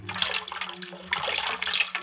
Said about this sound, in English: Yeah, this cold water will help that head.